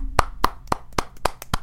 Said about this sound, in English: I'm calling for a round of applause right here. Here we go.